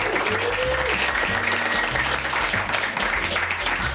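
An audience breaks into sustained applause, a dense, steady roar of many hands clapping at once with no pauses, loud throughout, while a faint low hum and stray murmurs sit beneath it.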